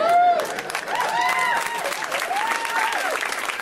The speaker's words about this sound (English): One more round of applause for that end.